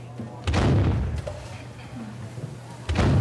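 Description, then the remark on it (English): Two loud cannon blasts, set to fire in an engineers' office each time a browser is downloaded, boom out a couple of seconds apart, each a heavy percussive thud followed by a rumbling, crackling decay, with a low steady hum underneath. “Another cannon. Another. The office becomes a naval war zone, and the engineers bathe in the percussion, high-fiving while calling out higher and higher download numbers.”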